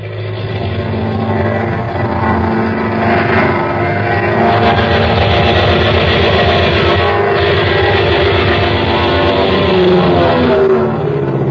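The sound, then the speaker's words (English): An Air Force airplane's engine roars loudly and without a break as the plane dives during shooting practice over a field near Gadeau, a dense low droning rumble whose pitch shifts and climbs slightly toward the end. No one speaks. “When I give you the signal, Sergeant, begin your dive.”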